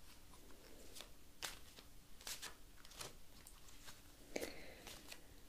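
household object, shuffling playing cards

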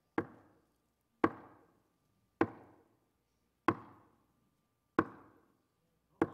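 impact, knocking on wood

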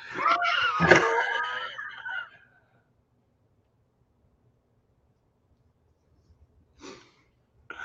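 human body sound, person breathing

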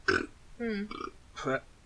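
human body sound, burp

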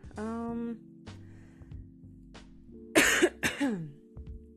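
human body sound, cough and throat clearing

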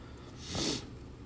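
human body sound, sniffling

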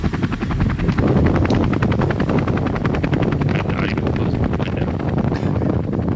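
vehicle, helicopter flying

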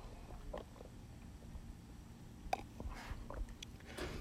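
food or drink, sipping a beer

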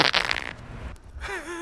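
human body sound, wet fart

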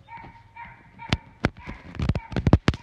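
animal, dog barking

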